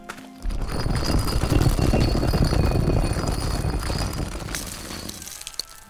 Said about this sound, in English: Here, help me shift this door.